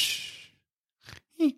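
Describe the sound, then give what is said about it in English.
A person imitates snoring: a long, breathy rasp, then a short puff of breath and a brief voiced tone that slides downward, like a feeble attempt at a whistle. “Oh, it's a snore and then a whistle.”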